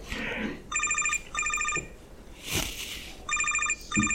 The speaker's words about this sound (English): I hope y'all can't hear that. Can y'all hear my phone ringing? Yes. I don't even know where it is. Oh, I do. It's in my car. Follow the beeping. There, they stopped.